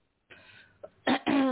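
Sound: throat clearing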